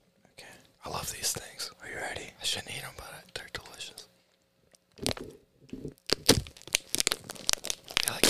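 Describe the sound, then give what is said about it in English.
Someone tears open a crinkly package of Sour Dudes sour candy from Dollar Tree, a series of sharp crackling, ripping bursts of plastic. Soft whispering comes before the opening. “We have sour dudes from Dollar Tree. And my sponge is going to be such a mess. That was kind of cool. Sour dudes. You want to open them?”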